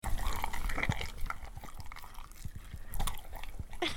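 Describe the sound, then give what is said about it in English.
A dog eats Alpo dog food, a wet mix with dry, with a steady stream of irregular wet smacks, squelches and licking clicks over four seconds. No one speaks. “Dog eating. That is a fucking dog eating.”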